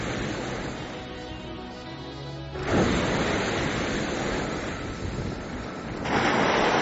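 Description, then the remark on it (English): A geyser bursts into eruption, recorded from very close by, with a sudden loud, broad whooshing roar of boiling water that keeps rushing steadily and swells again near the end, with no one speaking. “Warmed by the eruptions of boiling water”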